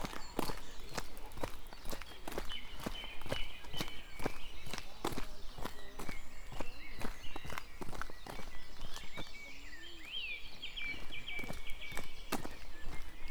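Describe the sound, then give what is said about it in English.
A song thrush sings bright, repeated whistled phrases over a steady rhythm of footsteps crunching along, the birdsong fainter and clearest in the latter half. “Song thrush singing away there.”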